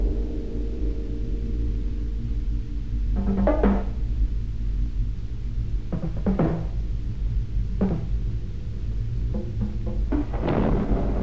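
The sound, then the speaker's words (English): Deep, steady thunder rumbles throughout, swelling into several louder crackling bursts spaced a couple of seconds apart. No voices are heard. “anger shook the heavens.”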